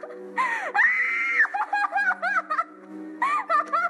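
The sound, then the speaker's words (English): An actress, as a girl, screams in horror, a long sustained wail followed by a series of shorter anguished cries and sobbing shrieks, loud, then another rising scream at the end. “that scream that Carly Beth has is so, or the cat, the actress says, is so horrifying”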